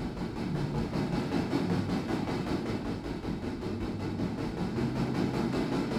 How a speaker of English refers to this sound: This train, bound for glory, will roll through sweeping valleys, where in the great sky above, deep blue clashes against billowing white, rising as high as the heavens, and chug up a colossal snow-topped mountain along winding tracks